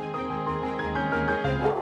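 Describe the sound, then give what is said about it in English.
Several dogs bark and yelp over one another in echoing indoor-outdoor kennels at an animal shelter housing 100 to 200 dogs, a dense, continuous chorus at steady loudness for the whole moment, with no one talking. “So these dogs actually have indoor-outdoor kennels, and they can go from inside to outside.”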